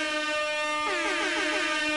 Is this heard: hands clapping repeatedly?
no